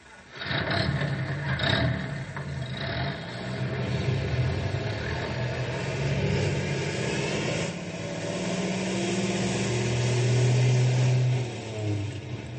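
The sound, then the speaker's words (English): A heavy rescue truck engine rumbles to life in a garage, then revs and pulls away, its steady droning pitch climbing as it accelerates, loud with no voices over it. “Grey Wolf, Stumpy, you fellas drive the other rescue truck.”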